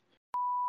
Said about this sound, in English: I'm sitting around in my room looking around for all the beeps. Where'd all these beeps come from?